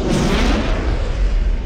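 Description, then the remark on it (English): A supersonic plane's double sonic boom, its two booms very close together, rolls out as a loud, deep, continuous thunderous rumble, heavy in the low end and sustained without pause, with no voices. “The two booms were very, very close.”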